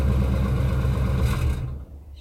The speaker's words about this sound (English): Oh, but okay, so it's definitely a truck because of the rattles right there. Listen as he kills the ignition. There's kind of a resonance in the metal of the truck. Listen.